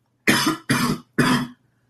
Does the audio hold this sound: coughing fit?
yes